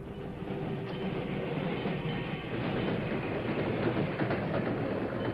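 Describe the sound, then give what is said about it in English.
A slow freight train bound for Junction City rumbles in and stops just short of a bonfire lit on the tracks, a steady, dense roar of rolling wheels and rattling cars that holds at an even loudness throughout, with no voices. “Fifteen minutes later, the slow freight for Junction City stopped just short of it.”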